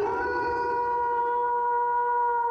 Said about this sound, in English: The wolf audio? Howling at the moon.